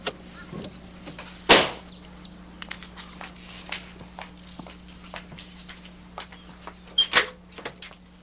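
Big electric metal gates at a house slowly part after a code is punched in by a driver pulling up in a car: a steady low motor hum runs throughout while the gate grinds open, with a loud clank near the start, scattered clicks and rattles, and another sharp clunk toward the end.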